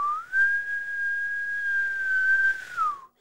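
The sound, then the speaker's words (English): A person imitates an elk bugle: a rising whistled tone that holds one long, steady high note for about two and a half seconds, then drops away at the end. No talking. “I have noticed in my own bugling, like I like to hit that long high note like that.”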